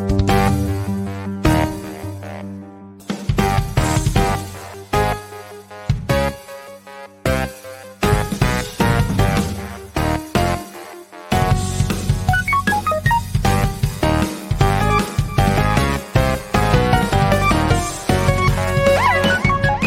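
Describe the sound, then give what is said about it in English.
An upbeat instrumental theme tune plays loud and close, with punchy rhythmic stops and starts early on, then a steady driving beat with bright melodic layers and no voices. “Actually, here, I'll play the theme song and then I'll come back with some ads.”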